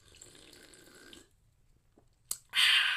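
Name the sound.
sipping a soda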